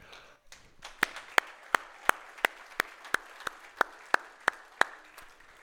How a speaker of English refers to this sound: I want you to know, when we clap to applaud the work that these guys have done, we're thanking the Lord. I want to make that distinction.